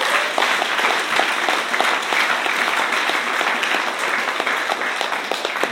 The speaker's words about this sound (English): Can you just give him a round of applause as he comes up?